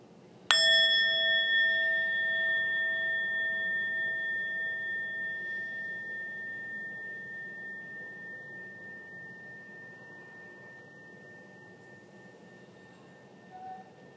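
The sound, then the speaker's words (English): A single meditation bell is struck once, ringing out with a clear, bright tone of several pure overtones that sustain and slowly fade over more than ten seconds, with no one speaking. “I've brought with me a bell. So I'm going to ring this bell a couple times.”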